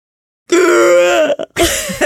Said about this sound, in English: Will you do me a favor? Because I feel like you do it better. Will you just gasp in Cockney? Of course.